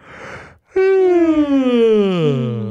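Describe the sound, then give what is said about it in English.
A long yawn: a breathy intake of air, a brief pause, then a drawn-out voiced groan that slowly slides downward in pitch and trails off. “I was just taking a yawn break because I heard you talking.”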